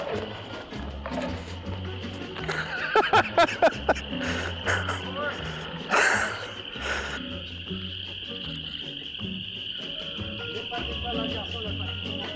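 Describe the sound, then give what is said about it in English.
Frogs croak in the background on a golf course, a few rapid bursts standing out against a steady, high chorus of insects, with faint indistinct voices now and then. “Got some frogs off in the background, that's fun.”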